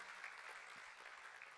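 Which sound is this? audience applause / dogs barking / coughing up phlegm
audience applause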